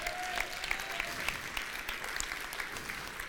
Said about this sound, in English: yeah, give the Lord a clap.